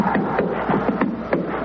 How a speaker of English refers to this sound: Stomp the snow off your feet.